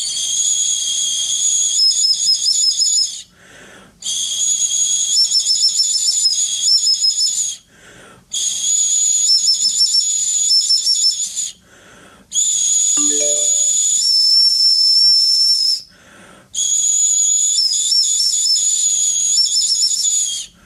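Shrill, breathy whistling from an ancient bird bone flute about 12,000 years old, heard in a recording linked in a Smithsonian article, played in five sustained high-pitched phrases with short pauses between, the tone wavering and trilling slightly. No voices are heard.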